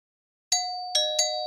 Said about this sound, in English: Meanwhile, a wolf came out of the forest. He saw the three children through the window and came up with a very bad idea. He went up to the door and rang the bell.